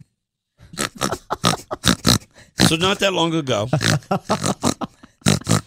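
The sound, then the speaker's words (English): A person imitates a pig with a loud stretch of snorting and oinking grunts in the middle, between bursts of ordinary talking before and after. “Snort, pig.”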